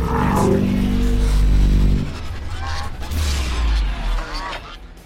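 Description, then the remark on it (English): Geese honk repeatedly in harsh, wavering calls over a dense, noisy background, with a loud low droning blare filling the opening couple of seconds. “But the geese are still coming after us.”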